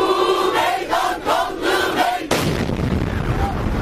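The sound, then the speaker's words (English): A crowd at a peace protest beside Ankara train station in Turkey chants and sings together in rhythmic bursts, then a sudden loud explosion rips through the crowd, followed by a rumbling, noisy aftermath. “It began as a protest calling for peace, and then this.”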